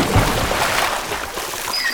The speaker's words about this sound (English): Don't worry. The donkey's crashing into the hippo's watering hole in 3, 2, 1.